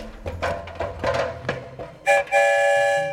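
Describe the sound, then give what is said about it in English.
Several mechanical clunks and rattles as the train doors close, then a loud, sustained train horn with a bright, steady pitch that holds to the end. No one speaks. “we are currently boarding the story train”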